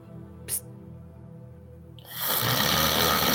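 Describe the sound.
A voice imitates the snoring of a sleeping character, Grinner: a low, rattling throaty rumble followed by a loud, breathy rushing exhale that fills the final second.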